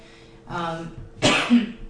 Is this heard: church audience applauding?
no